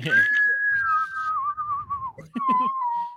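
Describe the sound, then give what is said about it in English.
A person whistles a long, steady tone that slowly glides downward, then a second, shorter whistle follows after a brief gap, imitating the whistling flight of a Nerf Vortex toy football. Fairly loud. “Bitch whistled.”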